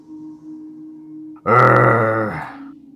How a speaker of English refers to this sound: What the hell you growling at?